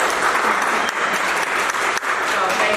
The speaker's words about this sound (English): You know, Ready, Set, Grow is its third year, and before we get started, I just want everybody that's here to give yourself a hand clap, because I know it's a lot.